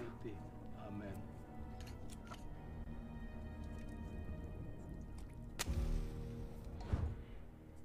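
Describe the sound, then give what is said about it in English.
Liquid pours steadily with a soft, continuous splashing wash as someone makes a smoothie, broken by a couple of brief knocks near the end, while muffled voices murmur faintly in the background. “Why are we pouring liquids and why did we crack eggs earlier?”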